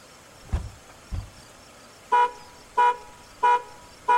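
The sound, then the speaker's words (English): Two low thuds, then a car alarm blares in four evenly spaced, loud honks about two-thirds of a second apart, each a short harmonic blast, with no voices. “Oh, shit. What the fuck? I tripped the alarm.”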